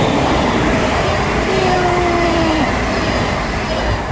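A train rumbles past, a loud, steady roar of wheels on rails with a brief thin squeal of metal rising over the din midway through; no one speaks.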